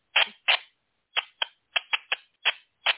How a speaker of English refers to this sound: I press the call button, and through my speakers, what he sends out goes through my radio. And then when I release it, it starts chirping. Now, it was chirping a little bit tonight. Yeah, there you go.